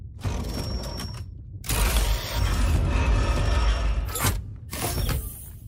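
A heavy mechanical door aboard a ship in a video game grinds open with creaking, rattling gears, a dense churning rumble lasting several seconds in two loud bursts separated by a brief pause. Nobody speaks.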